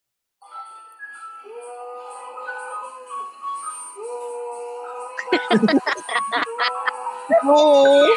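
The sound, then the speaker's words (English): A dog howls in long, drawn-out wavering tones, joined by sharper yelps and bursts of noise midway, then ending in a louder, higher howl. “Well, my dog only howls whenever this happens.”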